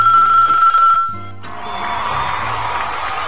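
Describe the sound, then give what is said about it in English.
A telephone rings for an incoming call to the Love Ultra Tuesday R&B Mix Show, with one steady, bright ring lasting about a second, then cuts off abruptly and gives way to a low, hissing line noise. “Who we got on the phone line here?”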